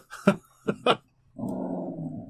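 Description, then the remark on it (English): Dogs play: three sharp, quick barks ring out, followed by a steady, rumbling growl that carries on for about a second. No one speaks. “Quit fucking with the other dog.”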